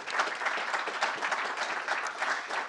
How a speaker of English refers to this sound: let me ask you all to join in a round of applause for the Atlantic Council doing this event